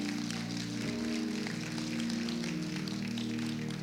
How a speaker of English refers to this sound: Can we give all of them a round of applause today?